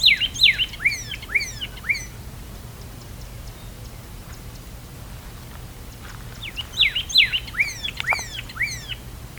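A pyrrhuloxia, also called the desert cardinal, sings two bursts of sharp, descending whistled notes, each a quick series of clear slurred chirps, separated by a few seconds of quiet outdoor background hiss.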